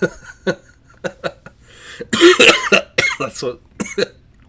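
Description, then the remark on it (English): A string of loud coughs, several sharp hacking bursts in quick succession with a heavier, rougher fit in the middle, no talking alongside. “Yeah, sorry for your headphone users out there. Those coughs are probably going to be loud.”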